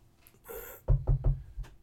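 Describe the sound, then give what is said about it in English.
Three firm, evenly spaced knocks on a door, fairly loud, then a softer fourth tap, preceded by a brief rustling hiss. No one speaks. “I'm going to walk up. Knock on the door.”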